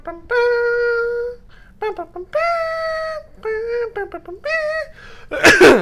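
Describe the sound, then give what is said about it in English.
A voice hums a slow, sustained melody, then breaks off with a single loud, harsh cough at the very end. “There's no coughing in Star Wars.”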